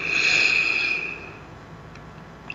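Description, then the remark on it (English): A long, airy exhale pushed out through the mouth past narrowed lips, as if through a straw, during a guided breathing exercise, with a thin whistling hiss that holds for about a second and then fades into quiet breath noise, with no talking. “Like through a straw. Close your eyes. You're absolutely safe. Keep breathing.”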